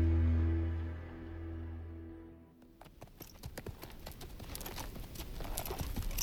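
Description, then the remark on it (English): A low, sustained drone fades out, then horse hooves clip-clop in a steady, brisk rhythm on a hard surface, fairly loud, as a rider rides horses to a house, with no one talking. “I collected the horses and rode to the house I'd been told about, a good-sized adobe in a district where all the shops had Spanish names.”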